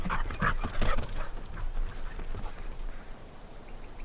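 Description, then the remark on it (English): A dog named Arrow whimpers with a few short, high-pitched whines early on as he is called back at a radio station at night, followed by steady scuffling and clattering steps. No one speaks. “Good dog.”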